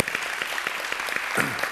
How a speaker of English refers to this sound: If you're glad you're here, give God a praise clap this morning.